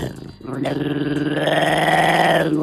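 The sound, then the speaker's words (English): A dog growls in a long, drawn-out, wavering tone that rises and bends almost like singing, sustained for a couple of seconds. “Yeah, it's this dog.”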